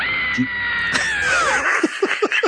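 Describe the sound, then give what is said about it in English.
A human voice mimics a bird's squawk: one long, strained, high-pitched cry that bends downward, then a quick run of five or six short, sharp yelps. “I'm going to do the same squawk, though, I'm afraid.”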